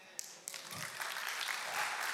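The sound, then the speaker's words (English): A church audience claps steadily, a dense wash of many hands that builds slightly and holds for a couple of seconds with no speech over it. “And again, I love that you're clapping about that.”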